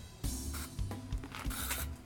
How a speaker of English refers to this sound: Thanks. I had to do it. Now I'm going to smell like bug spray all day.